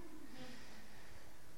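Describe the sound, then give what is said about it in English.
A soft, slow breath, one airy exhale rising and fading over a second or so, with no talking. “Especially when you breathe out slowly.”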